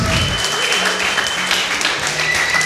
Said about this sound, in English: Melissa Kang is the real Dolly doctor. So if... Can we all have a round of applause for Melissa Kang?